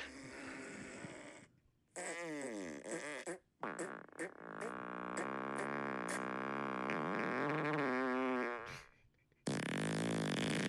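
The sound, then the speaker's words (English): A string of loud fart sounds from a soundboard app plays back to back, some short and sputtering, others long and wavering, separated by brief gaps of silence. “I just downloaded a fart soundboard.”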